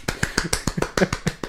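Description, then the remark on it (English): A quick run of about ten sharp hand claps or snaps, crisp, fired off in a fast, fairly even rhythm with no talking. “And then you give it the old clap job where it's like”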